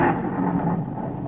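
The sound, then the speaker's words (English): A low, rolling rumble of thunder fills the moment, steady and heavy without sharp cracks, fairly loud and heard alone with no voices. “Doggone, it's thundering, too.”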